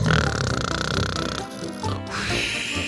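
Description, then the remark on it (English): A voice imitates loud snoring: a few rough, raspy, pig-like snorts in a steady rhythm that dip briefly in the middle and then resume, with no other talk. “Ooh, I fell asleep there for a second.”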